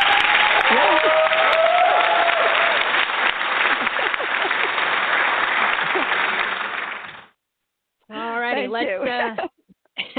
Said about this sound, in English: Well, you know, I'm going to make sure the audience gives you a special Jersey applause.